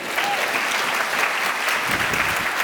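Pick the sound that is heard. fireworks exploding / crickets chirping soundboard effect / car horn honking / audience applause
audience applause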